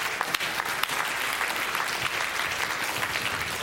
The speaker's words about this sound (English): That's where you clap.